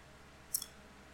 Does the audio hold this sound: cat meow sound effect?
no